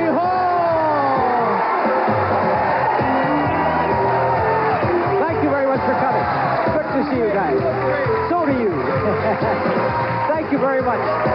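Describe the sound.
A studio audience on stage one at the Disney MGM Studios in Florida cheers loudly and continuously at a taping of the game show Let's Make a Deal, a dense wash of overlapping shouts, whoops and excited voices that never lets up across the whole stretch.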